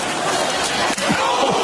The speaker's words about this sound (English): Warner just popped the ball carrier. You can hear that. 12 stories above the field up here. Watch him lower the boom here. Listen to him.